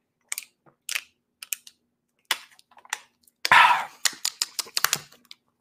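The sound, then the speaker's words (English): A person chewing food: moist, clicky chewing in an irregular rhythm, a dozen or so soft smacks with a louder crunchy burst midway, then a quick run of sharper clicks. No voices. “Yeah, you can hear the chewing.”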